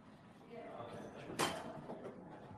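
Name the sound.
door being closed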